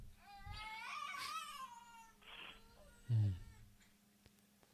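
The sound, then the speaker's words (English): A pet monkey lets out a string of high, wavering squeals that rise and fall in pitch, then a brief breathy burst and a louder, lower chattering sound, with no talking. “I hear your monkey.”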